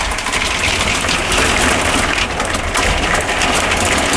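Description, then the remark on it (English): Hail pounds hard and steadily on a surface, a dense, loud rattle of countless rapid impacts that keeps going without a break and with no voices. “Can you hear this hail?”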